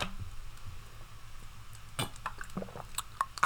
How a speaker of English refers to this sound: I'm sipping on some Pond Water right now. Listen. Why don't you take a sip?